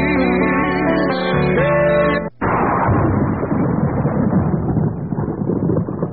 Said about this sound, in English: That's a kind of a good sound for you, Matthew. I wonder if that's... The lightning bolt? Yeah, it is.